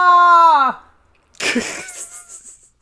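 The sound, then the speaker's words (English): A loud, strained scream of pain holds for under a second and bends downward in pitch, then after a short silence comes a rough, breathy burst like a pained gasp that trails off. “I started off this episode with the scream and I ended with the scream.”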